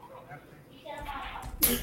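A single sneeze bursts out after a soft, breathy intake, sharp and noisy, followed by a brief rustle. It sounds fairly quiet overall.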